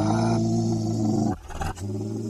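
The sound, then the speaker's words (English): A person growls backwards with eyes closed, in a low, rough, sustained voice for over a second, then breaks into a few shorter, choppier growling bursts, with no other talking. “What you need to do is close your eyes for 3 seconds while growling backwards.”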